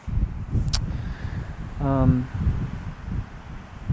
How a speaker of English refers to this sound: Here I'm on top of a mountain, I'm cold, and it's windy.